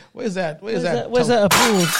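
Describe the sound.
Voices talk for a moment, then a sudden, loud shattering-glass sound effect bursts in near the end, its bright scattering noise lingering for about half a second as the talking continues underneath.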